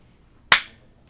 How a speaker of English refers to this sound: So we'll do the sync clap thing.